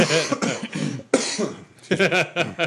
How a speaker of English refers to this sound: They've been coughing indignantly.